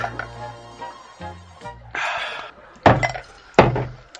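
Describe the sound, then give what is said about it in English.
Shot glasses plunk into pints of Boddington's beer one after another: three separate clinking, splashy impacts, fairly loud, with a low hum underneath beforehand. “We now have Boddington's all over the studio, so give us a second.”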